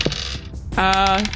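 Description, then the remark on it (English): Dice clatter across a tabletop in a quick burst of hard little clicks and rattles, with a short voiced hum overlapping near the end. “Come on, hot dice.”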